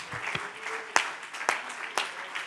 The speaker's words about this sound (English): If you're ready to receive the word, clap your hands unto the Lord one more time.